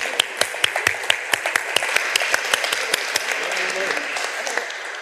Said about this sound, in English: And with that, please give a warm round of applause to this panel and their MC,